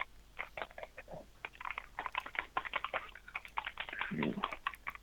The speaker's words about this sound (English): What are you typing there, sir? What's that? What were you just typing there? Not typing anything.